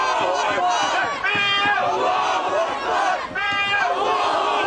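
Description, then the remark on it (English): A large protest crowd chants loudly in unison, repeating a rising and falling phrase in steady cycles over a constant roar of many voices. “the protesting for terrorists who behead babies goes on.”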